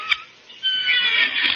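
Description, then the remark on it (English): A porch swing squeaks with a long, high-pitched, whining creak that starts after a brief click and a short pause, then holds steady and grows slightly louder for about a second. “A squeak in the porch swing is like a moose call to a mosquito.”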